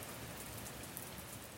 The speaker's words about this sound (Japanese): 雨が降っています。今日は一日雨です。